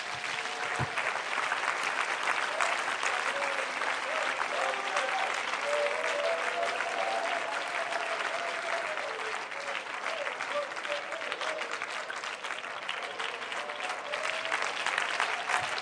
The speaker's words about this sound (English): Before you're seated, would you clap your hands unto him? You know he's a good God.